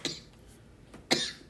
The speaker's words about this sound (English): And he's coughing again.